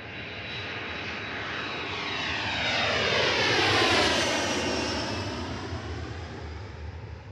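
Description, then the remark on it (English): A steady, roaring airplane engine in flight drones throughout, swelling louder toward the middle, then easing slightly. No voices are heard. “And frankly, I'd rather not try to tell you while I'm figuring out how to fly this plane.”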